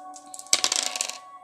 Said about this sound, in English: All right. So let's go ahead and roll the dice and find out the truth.